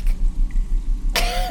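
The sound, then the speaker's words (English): A low, steady rumble fills most of the moment, then a sudden harsh cough from someone choking on dust bursts out near the end, rough and breathy with a strained, choking edge. “Oh, the dust is choking me!”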